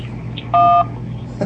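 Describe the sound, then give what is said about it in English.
A single loud telephone beep, a steady dual-tone keypad tone lasting about a third of a second, sounds as a caller hangs up after leaving a message on an answering service, rising over a low, constant electrical hum with no talking. “He's just trying to hang up.”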